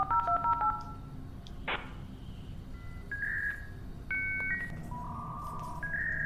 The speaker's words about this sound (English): Familiar crackle of the 56K modem connected to the internet. It buzzes. It's annoying. It's an obnoxious sound.